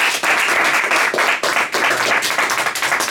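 A crowd applauds steadily, dense overlapping claps filling the room at a loud, sustained level with brief dips before swelling again.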